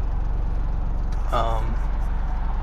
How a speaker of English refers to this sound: Man, oh my gosh, so many cars.